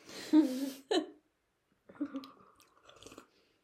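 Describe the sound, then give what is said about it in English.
Someone slurps lemon tea: two short, loud, wet sucking slurps, a pause, then a longer, softer slurp with a faint whistling, gurgling edge that trails off. “so you're over here slurping next to my ear.”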